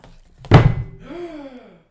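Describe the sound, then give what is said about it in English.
A single loud, heavy thud of a boot stomping down, followed by a brief wavering, voice-like tone as the sound fades out. “I have a boot on my foot.”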